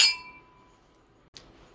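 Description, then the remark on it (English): A single bright clink of wine glasses in a toast with Cabernet Sauvignon rings out at the start with a shimmering tone that slowly fades, followed by a soft brief knock a moment later. “All right, so let's take a sip. Cheers. Cheers.”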